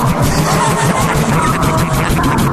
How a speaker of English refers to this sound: The tune is created when car tires drive over the strips, which are It's really genius. I mean, whoever actually made it work. So these strips, it's the same thing like if you accidentally veer too far on the side of the road.